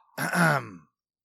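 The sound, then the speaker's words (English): A single loud throat clearing, a rough voiced burst lasting just over half a second, heard on its own with silence after. “And I clear my throat loudly.”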